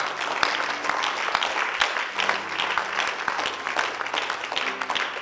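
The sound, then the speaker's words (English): An audience claps steadily throughout, a dense, even patter of many hands at moderate loudness with no standout cheers, sounding fairly subdued rather than rousing. The clapping comes during a church sermon. “Your clapping is not enthusiastic at all. There is no euphoria in your clap.”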